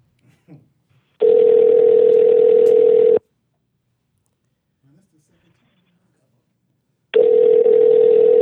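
A telephone line tone sounds while a call is placed to call someone back: two long, steady buzzing tones of about two seconds each, separated by a pause, with faint murmurs in between.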